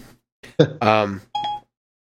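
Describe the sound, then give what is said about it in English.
An iPhone's Siri voice assistant chimes and speaks in short synthetic bursts, with tonal beeps mixed into clipped, robotic-sounding speech, moderately loud. “Siri is having a spasm over here. Let me shut off my phone.”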